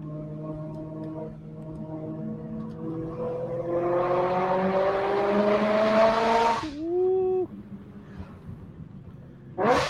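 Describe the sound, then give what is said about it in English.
A V8 race car engine revs hard, its pitch climbing steadily to its 8,200 RPM redline over about six seconds before cutting off sharply into a brief, lower burble. “8,200 RPM red line on a V8.”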